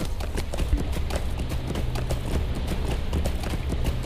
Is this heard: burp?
no